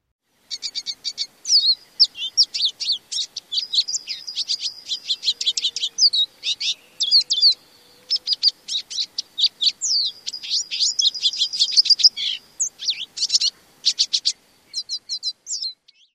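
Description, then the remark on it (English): A small songbird gives rapid, almost continuous call notes, with bright high-pitched chirps and twittering in quick bursts, clear with no voices present. “Did you hear their call notes?”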